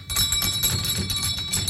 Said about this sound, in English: Wow, that's a hell of a bell. Did that just come away from the wall? There you go. There you go. Ah, we're like landlords. It's brilliant. Last orders at the bar, please. Last orders, please.